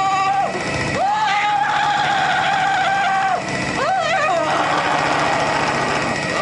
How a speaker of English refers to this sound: And there is like a 355 horsepower engine thrusting a dildo into her ass so hard and so fast that her vag lips are flapping in the wind.